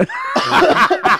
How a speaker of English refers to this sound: I was trying to cough.